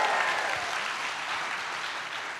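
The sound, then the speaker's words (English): An audience claps for the band leading worship in a dense, steady wash of applause that holds at an even, fairly loud level for a couple of seconds without any voices. “Let's give it up for the band leading us in worship.”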